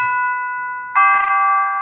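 Two ringing chime notes of the Westminster chimes melody of Big Ben, the first held steadily before a brighter second tone strikes and rings on, clear with no voices.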